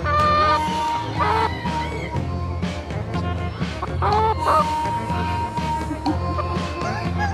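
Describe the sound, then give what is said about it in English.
Many exotic chickens cluck and squawk together at a poultry show at a fair, their overlapping calls rising and falling against a steady murmur of background crowd noise. “I love my chickens. When it gets dark, I flip them upside down and I rock them to sleep.”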